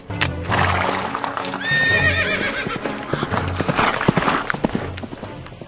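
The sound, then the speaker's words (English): A horse whinnies loudly, a high wavering neigh, followed by a quick run of hooves clip-clopping in an uneven rhythm, with no talking over it. “Get the horses!”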